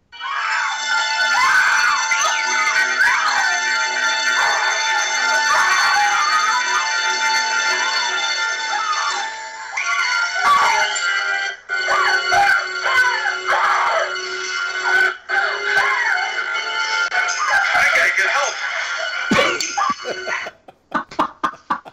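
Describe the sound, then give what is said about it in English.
A person in a movie scene screams loudly and almost without pause for about twenty seconds, the shrill cries wavering up and down in pitch, broken only by a few brief gaps before trailing off. “After 30 seconds of screaming, I've got to get help.”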